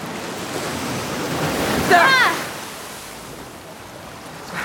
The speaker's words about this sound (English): Because I hear water again. Look out!